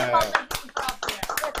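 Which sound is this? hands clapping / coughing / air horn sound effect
hands clapping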